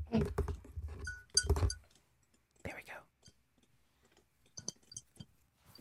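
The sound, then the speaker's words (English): A flurry of sharp clicks and clattering taps in the first two seconds, followed by soft, low speech and a few more scattered clicks near the end. “Wait, aren't we supposed to be clicking things as we're talking?”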